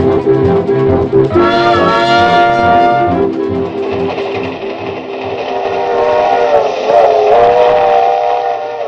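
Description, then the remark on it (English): A New York Central passenger train approaching Buffalo, New York, rolls along with a steady rumbling clatter, and a loud, chord-like whistle blows for a couple of seconds near the start before the running noise carries on alone. “Last Wednesday afternoon, on a New York Central passenger train approaching Buffalo, New York, a man hastily wrote a letter to his wife.”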